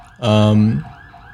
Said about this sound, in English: we got a little siren going here